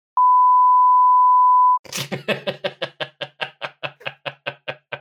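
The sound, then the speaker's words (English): A loud, steady censor bleep tone holds for about a second and a half, then cuts to a rapid run of sharp, evenly spaced percussive knocks, like chopping. No one speaks. “You haven't had a beep of the week. Do you want to throw in something obscene at the last minute?”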